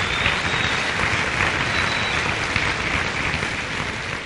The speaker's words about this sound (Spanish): Un aplauso para los nuevos empresarios.